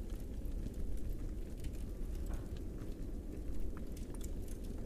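A firepit fire in a cave crackles steadily over a deep, rumbling roar, with scattered sharp pops and snaps throughout. It is continuous, with no voices.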